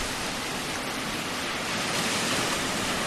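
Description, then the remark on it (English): Ocean waves washing over a pebble beach with snow along the water's edge, a steady, dense hiss of surf that stays constant throughout, fairly loud with no voices. “I don't usually record on high sensitivity, but I thought you'd want to hear the waves.”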